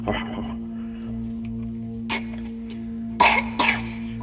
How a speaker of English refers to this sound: Got a bad cough.